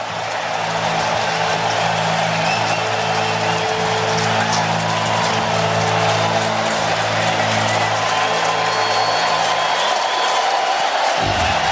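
A large baseball stadium crowd roars and cheers steadily for several seconds, looking for a strikeout with pitcher Alvarado ahead 0-2 in the count; a dense, loud wall of voices with a low droning tone underneath that cuts off near the end.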